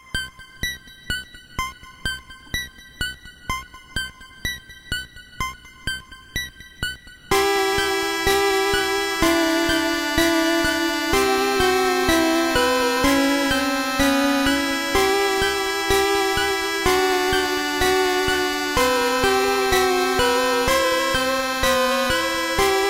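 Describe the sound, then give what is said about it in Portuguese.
Eerie video game town theme music, the game's Lavender theme: a sparse, plinking melody with regular pulsing notes for several seconds, then fuller, sustained chiptune harmony swells in and continues steadily with no talking. “Qual era a musiquinha favorita de vocês aí? Lavender.”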